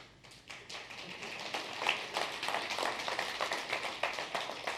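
An audience claps steadily for several seconds, a dense patter of many hands, with no talking over it.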